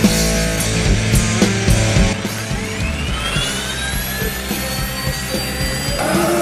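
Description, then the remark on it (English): A helicopter engine runs steadily and loudly, its turbine whine climbing in pitch as it spools up over a constant low mechanical roar, with no voices. “The chopper is ready, and so are the, guests.”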